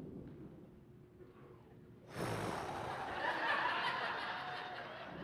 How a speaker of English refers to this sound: Just for the benefit of you that are live streaming this thing, this is a big clap of thunder right there. Make me nervous.